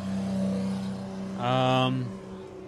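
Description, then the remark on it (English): A Gunther Werks sports car drives past, its engine note swelling into a strong, tonal roar for about half a second before fading, over a steady low background rumble. “They might be bringing the, There goes the Gunther Works.”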